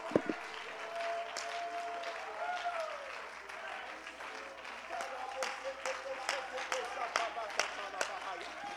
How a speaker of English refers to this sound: Would you clap your hands and praise the Lord here right now?